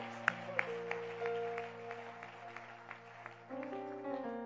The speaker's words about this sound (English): That is why we are talking about the cell system and church growth. Cell system and the church growth. Are you clapping your hands for that? Practical. Yeah, practical.